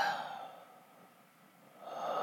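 A person breathes heavily right into the microphone to fill dead air: a loud rushing breath fades into a brief lull, then another strong breath swells back up. No one speaks.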